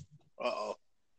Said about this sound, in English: Oh, my dogs are fighting.